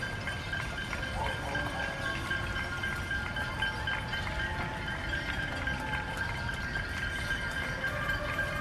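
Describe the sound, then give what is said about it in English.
A dense, steady din of a city celebration: a kazoo and saxophone droning over ringing bells, clapping and scattered yelling, all blended into one continuous wash of sound. “I can hear a kazoo, I can hear a saxophone, bells clapping, yelling.”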